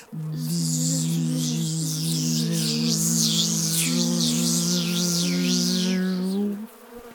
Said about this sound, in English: Then I shall send my stinging wasps to come and get you. Zico heard a buzzing, droning sound getting louder and louder.